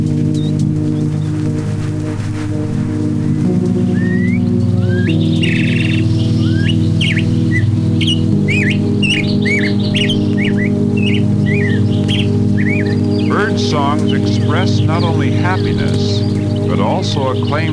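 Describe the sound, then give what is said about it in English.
A killdeer calls excitedly in an upland meadow while running in short bursts through damp grass and searching for food, giving a rapid series of sharp, shrill notes that grow busier and more insistent toward the end, heard over a steady low background drone. “In an upland meadow, a killdeer runs in short bursts through the damp grass, expressing his excitement as he searches for food.”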